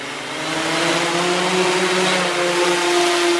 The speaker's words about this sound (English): It's called Stillfly, a three-wing, five-pound drone that flies just feet above the ground.